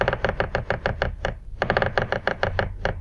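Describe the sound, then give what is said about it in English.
A little woodpecker looking for something to eat hammers on a tree in two quick bursts of evenly spaced knocks with a short pause between them, sharp, with no voices. “It was a little woodpecker making a big sound.”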